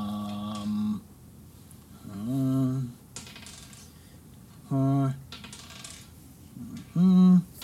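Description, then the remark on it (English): Many dice clatter and rattle across a table in several scattered bursts, rolled for a spell cast at 6th level in a game, with short bits of voices sounding in between. “Oh, that's a lot of dice.”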